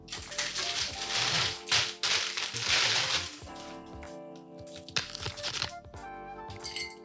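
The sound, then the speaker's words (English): Crisp crackling and snapping from a celery stalk being handled and added to a Scottish smoky Bloody Mary, with light clinks and taps against the glass, busy at first and then thinning out into scattered small knocks. “I think it Bloody Mary definitely needs some celery. So I'll just grab some of that.”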